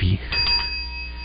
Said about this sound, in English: I feel like the guy in Breaking Bad. Yeah. All I can do is ring the bell. Your bell's right there.